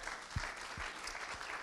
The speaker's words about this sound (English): Could we give just another round of applause for the worship team for leading us this morning?